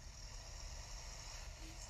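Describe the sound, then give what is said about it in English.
A truck engine in a video game drones steadily throughout, a continuous low rumble with a broad hiss on top, unchanging, with no one speaking. “There's a person with a truck.”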